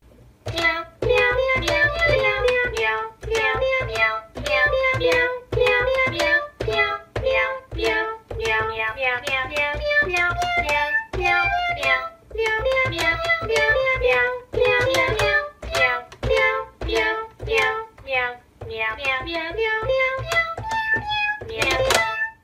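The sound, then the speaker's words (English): Keyboard Cat, a cat, plays a bouncy electronic keyboard tune on its own for about twenty seconds, with punchy, evenly paced chords and a steady beat, loud, with no one talking. “Until then, though, we're going to let Cat Keyboard play us out.”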